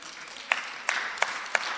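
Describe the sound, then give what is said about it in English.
A crowd applauds in a steady, hissing wash of clapping, with four louder individual claps standing out at uneven intervals. No one speaks. “You clap so that it looks like everybody's clapping.”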